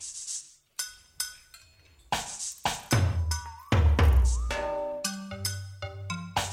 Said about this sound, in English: You hear that? That's spooky. Someone banging on a glass.